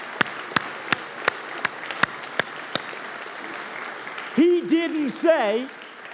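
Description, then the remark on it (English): A church audience gives a hand clap of praise to God, clapping together in a steady rhythm, about nine sharp unison claps over a broad crowd wash, then the clapping stops and a voice calls out briefly. “Hey, come on, let's give him a real hand clap of praise.”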